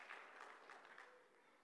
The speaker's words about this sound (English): Let's give the Lord a round of applause for his love. His love.